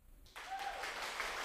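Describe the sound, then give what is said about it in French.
An audience applauds a performer's humour: applause breaks out abruptly after a quiet moment, a dense wash of many hands clapping at steady loudness, with a faint whistle or cheer rising through it. “Elle va m'applaudir.”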